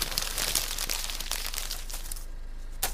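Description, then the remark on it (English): Paper or a wrapper is crumpled up into a ball to be thrown at someone, with a steady run of dry, crackly crinkles and sharper snaps over about three seconds. No one speaks. “Okay, I'm just going to ball it up and throw it at you, okay?”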